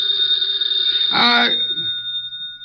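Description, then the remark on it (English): A telephone bell rings steadily and fairly loudly for a few seconds, with a brief murmur of voices breaking in partway through before the ringing carries on alone. “The phone.”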